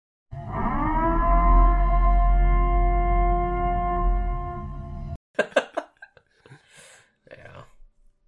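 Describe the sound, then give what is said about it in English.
A long, low wailing siren, the Purge siren from the film The Purge, drones steadily for about five seconds, rising briefly at the start and then holding loud and even, before cutting off as people begin talking. “It's like if I heard that Purge siren gonna go off, I'd just tell my Uber driver, just run the red, get us out of here.”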